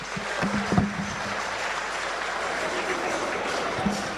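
Steady audience applause after a speech by the Minister for Education, a dense wash of many hands clapping that holds evenly for about four seconds, with a few brief low voice fragments underneath.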